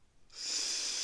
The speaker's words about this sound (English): For those that probably have heard the vape thousands of times. I'll give you a demonstration of what the vape sounds like. It sounds like this.